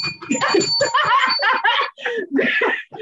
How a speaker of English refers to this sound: Ding, ding. Where's our bell?